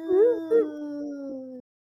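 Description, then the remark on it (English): A person jokingly mimics a 'gay alarm' with a wavering, siren-like wail that rises and dips twice, then holds a steady, slowly falling tone for about a second and a half before cutting off. “They probably got a gay alarm.”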